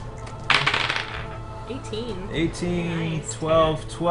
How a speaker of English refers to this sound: Here's a bunch of dice rolls.